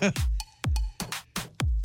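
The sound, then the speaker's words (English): A quick run of sharp, explosive sneezes, about four bursts close together, loud, with no talking between them. “Bless you. Excuse me. A little huckleberry in my nose.”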